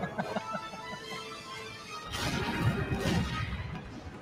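Quiet tonal background music gives way halfway through to a loud, roaring burst of explosions on an oil rig in an animated Batman film, a dense rumbling blast with crashing debris that sustains for over a second before easing off.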